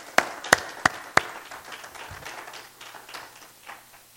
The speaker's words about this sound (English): Let's give him a hand clap of praise one more time.